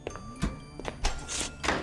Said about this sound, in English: Your stuffed toy, Mr. Lowell, appears to have locked the door.